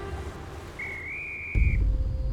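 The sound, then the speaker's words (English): A single sustained whistle, clear and steady with a slight rise in pitch, lasting about a second over a low rumbling background that grows louder as it ends. “Just then, Julian heard a whistle.”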